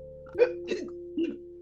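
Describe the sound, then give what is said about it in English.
A voice imitates hiccups: three short, abrupt vocal hics in quick succession, moderately loud, over a steady low hum. “would you rather have the hiccups for the rest of your life”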